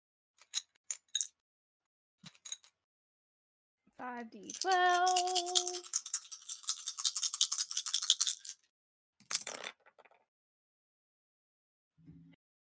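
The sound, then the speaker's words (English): A few sharp clicks, then a sustained several-second rattle of dice shaken in a cup, with a short tonal whine early on, ending in a final clatter and a soft knock as five twelve-sided dice are rolled for damage. “you cannot play with the dice.”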